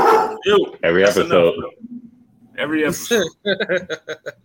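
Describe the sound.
Voices sing, then a rapid run of about six short, punchy bark-like yelps follows, a person imitating a dog barking rather than a real dog.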